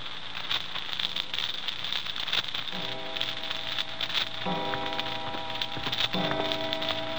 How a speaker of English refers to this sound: The clock was striking six.